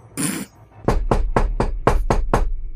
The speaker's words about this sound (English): there is a knock at the room door.